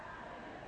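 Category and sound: vocal imitation, audience imitating sheep bleating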